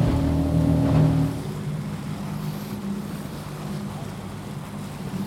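A relatively small petrol motorboat's engine drones steadily while crossing Mysingen toward Stockholm, its low hum strongest in the first second before settling under a broad wash of wind and water noise.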